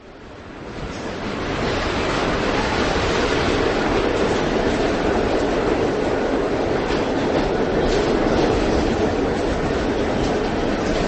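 A steady, loud rumble of a subway train running along the tracks, fading in over the first second and then holding a constant rushing roar with faint rattling, no voices.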